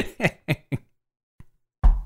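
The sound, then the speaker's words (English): Four rapid, heavy knocks pound on a door in quick succession, then a short pause, a faint tap, and another loud thud bursts in at the end. “There are people driving into my lawn and pounding on my door while listening to the Scott, it's this.”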